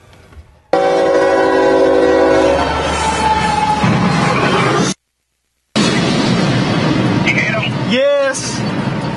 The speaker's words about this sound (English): Caught on video, a train versus semi-trailer collision that ends pretty much the way you'd expect. Cell phone video from Georgia shows the semi-driver scrambling to safety, the crossing gate on the truck. He makes it with just seconds to spare.